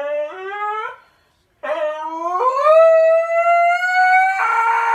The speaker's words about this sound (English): Is that what a real husky sounds like? That's a video of a husky. Huskies are some strange dogs.